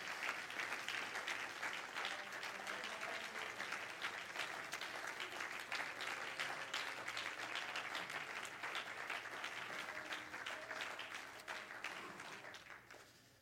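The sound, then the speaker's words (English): An audience on their feet claps their hands to thank God for his goodness, in sustained, dense applause, many overlapping claps forming a steady wash of sound that fades slightly at the end. “Clap your hands. Clap your hands. And thank God for his goodness.”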